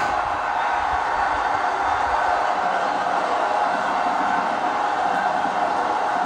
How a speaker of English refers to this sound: The crowd is very much into this one, as you could possibly hear.